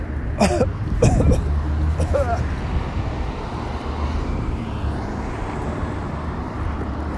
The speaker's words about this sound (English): That school bus must have been built in 1950. Oh, I think I'm smelling a locomotive diesel, actually. Or both.